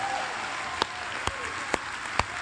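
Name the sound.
audience clapping and shouting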